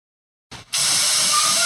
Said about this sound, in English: Did you just turn on the faucet? The water faucet? No, yeah. It's hairspray. Oh, I was gonna guess spray paint.